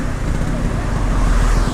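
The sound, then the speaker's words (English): Loud, steady roadway rumble of cars going by, a continuous low drone of engines and tyres with no clear breaks between vehicles. “I'm going when the cars have gone.”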